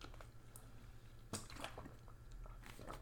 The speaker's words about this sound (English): let me quickly drink, because I'm fucking thirsty.